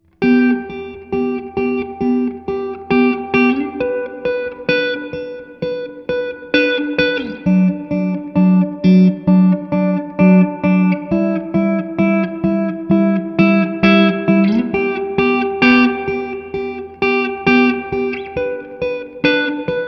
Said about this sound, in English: I think that's a very usable clean tone in a lot of situations. I know it was sort of a simple clip, a simple guitar part, but as I think you can hear, the important things to notice are things like the frequencies, the frequency response